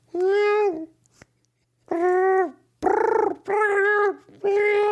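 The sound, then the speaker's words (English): A person mimics a cat, imagining Bill Cosby as a cat, with a series of five drawn-out, nasal meows and yowls, each about half a second long, separated by short pauses. The voice is loud. “He's been transformed into a feline.”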